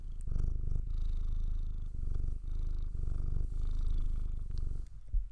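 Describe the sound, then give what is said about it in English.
A cat purrs steadily in a person's lap, a low rumbling drone pulsing in rhythmic waves with brief pauses for breath, heard alone without any talking. “She's purring in my lap.”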